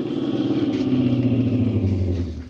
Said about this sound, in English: As I hiked along, I kept thumbing cars. The fourth one slowed down and stopped.